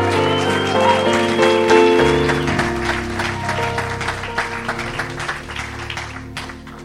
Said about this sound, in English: Let's give all of our visitors a hand clap.